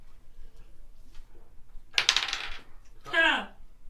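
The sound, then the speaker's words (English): A short burst of dice clattering across a hard tabletop during a history roll in a tabletop role-playing game, rattling for about half a second, then a brief ringing spin as a die settles. Fairly loud against a quiet background. “Did you roll? Oh yeah, I did.”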